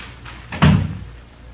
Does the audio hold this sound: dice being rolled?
no